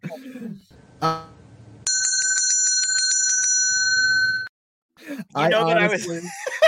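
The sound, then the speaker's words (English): A bright bell rings in a rapid, trilling burst for a few seconds, loud, with brief speech and laughter before and after. “If I had the patience and I didn't think people were going to sign off, I would ring that bell 21 times.”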